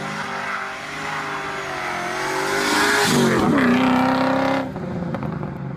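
A Rover SD1 3500 V8 car engine revs loudly, its harmonic drone climbing in pitch around the middle before cutting off abruptly near the end, with no talking.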